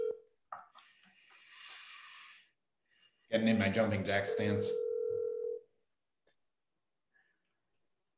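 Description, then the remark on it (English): A phone call to a med spa rings out unanswered with a steady electronic ringback tone, heard briefly at the start and again under a person talking, with a soft hiss in between. “Pick up the phone, please. How does a med spa not pick up the phone?”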